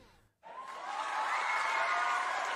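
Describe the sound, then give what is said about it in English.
After a brief silent gap, a crowd breaks into loud, sustained cheering and whooping that swells and holds steady to the end, dense like a canned sound effect. “Oh, let's get the crowd cheering again.”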